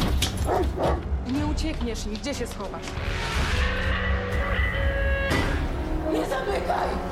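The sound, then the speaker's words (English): Vicious dogs bark and snarl aggressively in a dense, loud jumble, with repeated harsh bursts over a steady rumbling background and shouting voices mixed in, in the film Werewolf, set in an abandoned mansion surrounded by forest. “Children liberated from a Nazi concentration camp have to overcome hunger, thirst, and vicious dogs in an abandoned mansion surrounded by the forest.”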